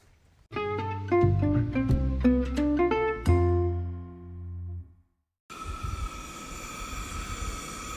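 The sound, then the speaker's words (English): A short melodic intro of clear, ringing tones, then after a brief pause a steady camp stove hiss sets in while dishes are done at a campsite about 9,000 feet above the town of Ouray, just after dinner, with a rushing noise of strong wind beneath it and no voices. “That hissing is the sound of the stove.”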